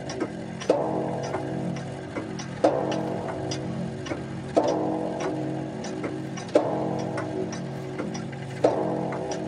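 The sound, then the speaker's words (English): A clock chimes five slow, evenly spaced strikes about two seconds apart, each ringing tone lingering and fading into the next, clear with no voices. “And then, after the lapse of 60 minutes, which embrace 3,600 seconds of time that flies, there came yet another chiming of the clock.”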